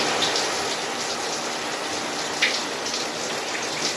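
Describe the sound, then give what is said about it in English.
A shower runs steadily, a dense, even hiss of spraying water with faint splashes and drips flickering through it. No one speaks. “All right, I took my shower, I took my medicine, and now I'm down by the river for a little fresh air.”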